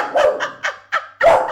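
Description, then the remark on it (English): A dog named Vera barks in a quick run of five or so sharp yaps, fairly loud, each bark clipped and separated by brief pauses, with no talking over it. “I've got my dog Vera here. She's obviously heard your singing.”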